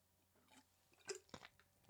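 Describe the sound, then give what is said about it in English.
Exaggerated, wet gulping of water, done like a Japanese soda commercial: a few loud swallowing clicks and smacks in quick succession with no talking. “I'll do like the Japanese commercial, like when you're drinking a soda.”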